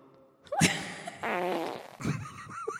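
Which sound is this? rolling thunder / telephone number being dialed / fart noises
fart noises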